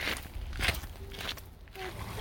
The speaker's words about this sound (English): It's a mild August afternoon, and I'm crunching along a gravel path in Acadia National Park in Maine.